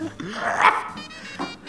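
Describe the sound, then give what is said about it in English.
A man's voice imitates the cartoon dog Scooby-Doo, letting out a warbling, rough bark-like yelp with a sharp peak midway, then a shorter grunt near the end. “I could do a pretty mean Scooby-Doo.”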